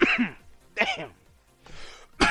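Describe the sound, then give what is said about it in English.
A series of about four harsh, raspy coughs in close succession, loud, the third one breathier and softer, with no talking. “damn, I'm coughing like Hillary right now.”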